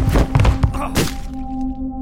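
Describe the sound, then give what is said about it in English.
Heavy tumble of two people falling to the floor during a struggle in a closet, one tripping and the other falling on top of him: a quick cluster of dull thuds, then one more solid thump, followed by a low steady hum. “I must have moved my leg somewhere relative to his, and he tripped.”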